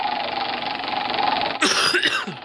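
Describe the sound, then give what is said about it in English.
A steady whirring hum runs for over a second, then a loud cough bursts out near the end, rough and breathy, cutting across the background noise. “I'm sorry. I need a cough mutton.”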